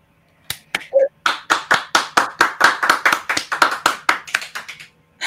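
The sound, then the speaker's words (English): A round of applause for the group on a late-night stream, in steady, evenly spaced claps, roughly four per second, loud and sharp for about five seconds, with a brief high tonal blip near the start and no talking. “Let's give a round of applause for the group right here.”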